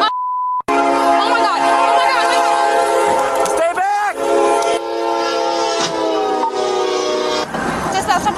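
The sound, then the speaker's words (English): A brief electronic beep, then a loud train horn blares almost nonstop for several seconds, its pitch wavering slightly, over the heavy rumble of a passing train. “The suspect was in the vehicle that was hit by the train.”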